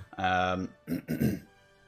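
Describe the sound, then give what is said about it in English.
A fairly loud throat clearing: a brief voiced hum followed by two rough, raspy bursts, like someone deliberately saying "ahem" to get attention. “But you kind of come up and just clear your throat.”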